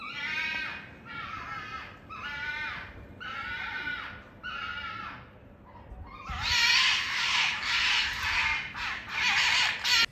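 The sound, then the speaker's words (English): Foxes scream at night in East London in a run of five harsh, wavering shrieks, then a louder, longer burst of overlapping cries. No voices, just the raw calls against a faint background hum. “But yes, in East London, I posted my story last night about the screaming foxes or cats? Foxes.”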